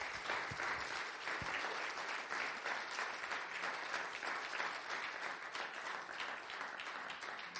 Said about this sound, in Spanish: Démosle un fuerte aplauso a Él.